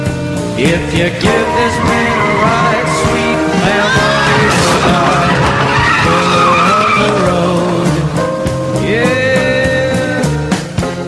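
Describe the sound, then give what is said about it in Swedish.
A loud, busy music jingle with tires squealing and skidding over it, pitched screeches sliding up and down, driving steadily for about eleven seconds with no talking. It introduces Motorblock, a radio segment on the motoring world combined with a quiz. “Den där jinglen förkunnar att vi bryter av den ordinarie utsändningen för motorblock.”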